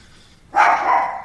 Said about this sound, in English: My dog's going nuts.